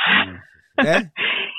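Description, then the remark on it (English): A voice imitates a person's heavy, rasping breathing in place of snoring: three harsh, hissing breaths in quick succession, fairly loud, the middle one with a throaty, voiced rattle. “he's a bit of a Darth Vader breather”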